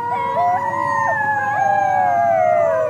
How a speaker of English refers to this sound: That's a group of howling wolf pups. And if biologists hear those sounds, they can find dens and maybe confirm wolves are breeding.